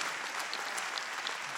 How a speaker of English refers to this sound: Clap your hands to the Lord if you've been blessed.